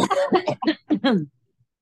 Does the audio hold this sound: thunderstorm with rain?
no